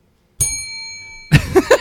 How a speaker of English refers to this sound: We're going to make use of that bell.